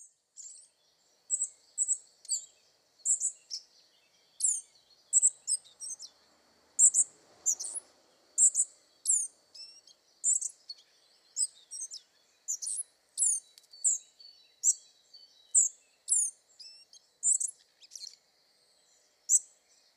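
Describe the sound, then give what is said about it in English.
A spotted flycatcher gives thin, high, squeaky chirps, repeated steadily about once a second with short clusters, clear against otherwise quiet surroundings, with no voices. “its habit has earned the species the local name of postbird.”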